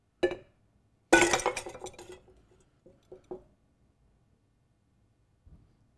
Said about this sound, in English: And he took two, they were coffee cups. I just have these because they're bigger. And he set them down and he took them. And he went like this.